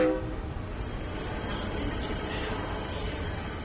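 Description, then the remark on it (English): A train rumbles past in a steady, continuous roar, with a short horn blast at the very start and faint squealing overtones later on. “Trains and subways that connect people and cities.”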